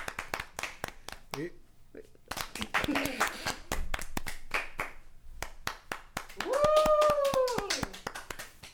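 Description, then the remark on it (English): Rapid, steady hand clapping runs through the whole clip, sharp repeated claps under people talking and laughing, with a voice rising into a loud, drawn-out exclamation near the end. “I just have to give a hand of applause.”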